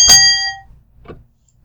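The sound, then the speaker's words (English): A bright, ringing ding with a shimmering decay, followed about a second later by a second, softer and shorter ding, used as a signal meaning yes. No voices are heard. “Two dings means yes.”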